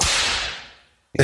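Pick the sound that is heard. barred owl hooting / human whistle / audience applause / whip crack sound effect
whip crack sound effect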